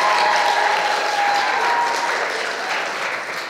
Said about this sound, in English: So let's give her a round of applause as she comes up here.